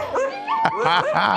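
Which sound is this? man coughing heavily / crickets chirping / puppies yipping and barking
puppies yipping and barking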